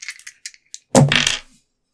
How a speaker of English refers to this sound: Yeah, yeah. Roll the dice. Okay.